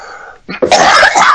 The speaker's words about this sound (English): How about if we start almost over again and you say whatever the fuck you say, and I'll just cough.